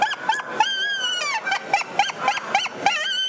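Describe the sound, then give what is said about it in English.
A yipper howler predator call imitating young coyote yips: a rapid string of about eight sharp, high-pitched yelps with quick rising and falling pitch swoops, fairly loud and with no talking over them. “This is a yipper howler. Young dog, old dog.”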